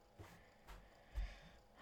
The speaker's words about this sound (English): Oh my god. Okay. Sorry. I'm breathing. Let's go upstairs.